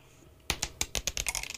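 Red dice, number three, clatter onto a hard surface after a brief quiet moment, a burst of sharp clicks that bounce and patter faster as they tumble to a stop, fairly crisp.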